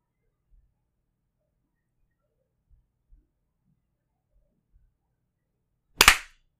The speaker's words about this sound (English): Okay, we'll just clap at 50 seconds.